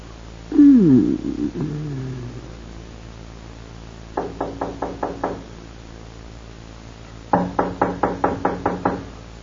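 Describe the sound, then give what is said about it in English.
A descending wail or meow-like cry opens, then two bursts of rapid knocking on a door, about six knocks and then eight, firm, with pauses between. “Albert, better let me go. The door. Let it wait.”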